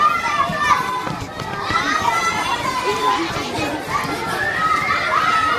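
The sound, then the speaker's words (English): Lively school playground noise of many pupils shouting, calling and laughing at once, a steady loud din of overlapping high young voices with no clear words standing out. “Out on the school playground, we talked to a few students.”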